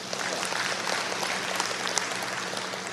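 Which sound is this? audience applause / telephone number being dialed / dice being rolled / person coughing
audience applause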